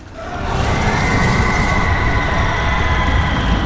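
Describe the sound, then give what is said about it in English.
The Wailing Gates, metal gates at the entrance to the Scream Eater's realm, burning open and shrieking: a loud, sustained metallic screech with steady high whining tones over a heavy, rumbling roar, swelling in within the first half second and holding steady, with no voices. “The things burned open like the goddamn metal wall was stretching its mouth to shriek. And it was.”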